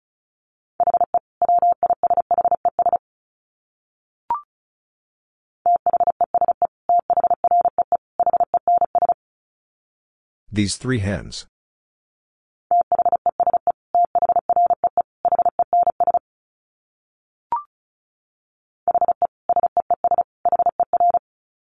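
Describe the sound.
Rapid bursts of a steady, mid-pitched Morse code tone keyed at about 35 words per minute, in several groups separated by silences, with a brief spoken phrase in the middle and faint clicks.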